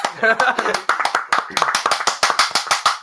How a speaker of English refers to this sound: Clapping after a movie.